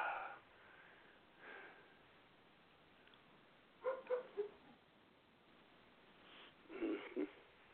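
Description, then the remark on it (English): An upset dog snorts and sniffs in a few short, breathy bursts separated by quiet pauses, with a quick cluster of snuffles near the middle and another toward the end. “Yeah, I know even the dog's upset about it.”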